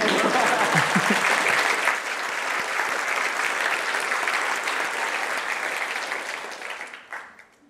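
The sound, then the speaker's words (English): A crowd applauds steadily, a dense wash of clapping that holds strong for about seven seconds before thinning and fading out at the end. “Yeah, you can applaud to that.”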